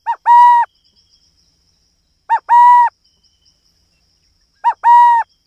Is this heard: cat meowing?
no